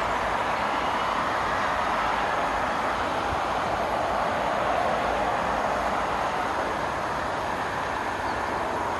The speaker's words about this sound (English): stand well away from the edge of platform 2. The approaching train is not scheduled to stop at this station.